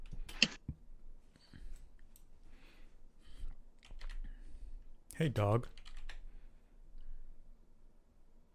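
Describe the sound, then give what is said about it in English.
Rapid keyboard typing clacks along in irregular bursts, with a brief spoken remark cutting in partway through, as someone types ReZero into an anime list search. “I'm typing in ReZero on my anime list, and I'm not getting ReZero.”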